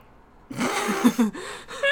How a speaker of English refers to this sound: These dogs are... Oh, my lord. Oh, my god. They need a bevy. They need to chill out with a bevy. The dogs need a bevy. Well, I guess the dogs are crashing our podcast sesh.